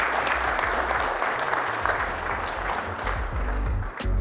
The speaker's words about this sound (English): So fill out the survey, and as you leave, let's have a round of applause for the panelists.